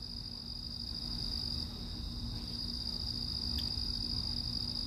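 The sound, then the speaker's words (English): A steady chorus of crickets chirping, a continuous high-pitched trill that holds evenly throughout, with a low background hum and no voices. “The Cricket said, what's up? The Locust said, what's up?”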